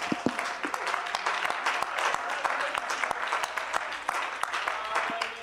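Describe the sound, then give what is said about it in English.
A church audience claps in praise to the Lord, dense overlapping hand claps forming a continuous, moderately loud applause with sharper individual claps popping out throughout, and a faint murmur of voices underneath. “Can we go ahead and give the Lord a hand clap of praise?”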